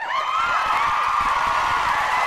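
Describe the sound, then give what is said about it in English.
A studio crowd cheers and applauds on a show on the Voice America Influencers Channel, a steady dense wash of many voices whooping over clapping, holding at an even, fairly loud level for the whole couple of seconds, with no speech. “You guys want, where's the round of applause, guys? Where's the crowd at?”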